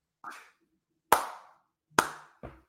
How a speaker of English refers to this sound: I'm clapping for anybody not watching the video. I think I can still hear. I don't know if it sounds like a clap or me banging my head against the table.